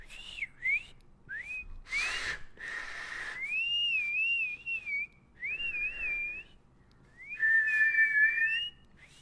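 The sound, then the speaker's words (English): A person whistles a wavering, sliding tune in several short phrases, clear, with brief breathy pauses between them and no talking. “He takes his claw hand and he whistles, right?”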